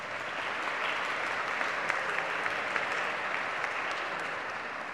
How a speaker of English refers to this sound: You know, it was March of 2020, the last time we had children in the sanctuary down front for some sort of a children's sermon, and I am excited that we are bringing them back. It reminds us, I think that is a reason for a round of applause.